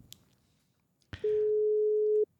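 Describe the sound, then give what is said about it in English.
A sharp click, then a loud, steady ringing tone of an outgoing telephone call made live holds one low-mid pitch for about a second before cutting off. No one speaks. “Let's see if they answer.”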